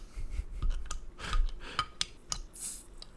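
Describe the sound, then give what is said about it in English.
A beer bottle cap being worked open: a run of scratchy metallic scrapes and sharp clicks over a few seconds, then a brief airy hiss near the end, with no voices. “Is it a twist top? Don't tell me it's a twist top. It did not easily come off.”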